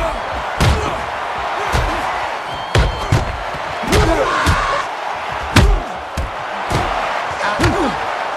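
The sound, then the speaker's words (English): Realistic boxing punch sound effects from the new version of Rocky IV, as Balboa chops the Russian down: a loud, irregular barrage of about a dozen heavy thuds and smacks with sharp attacks, over steady crowd noise and occasional shouts. “In the new one, it sounds more realistic, I guess? Less cartoonish?”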